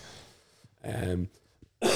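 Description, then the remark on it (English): A loud cough bursts out once with a rough, throaty tone, then after a brief pause another harsh cough begins, each short and forceful. “sorry, Coffin. You don't cough button in this thing.”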